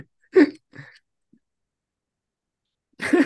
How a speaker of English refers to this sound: I don't know why this cough came back.